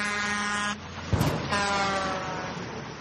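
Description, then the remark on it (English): A large truck passes on a road with a loud droning, horn-like tone, a sudden rushing burst in the middle as it hits something, then the steady drone carries on. No one speaks. “Just got hit by the truck.”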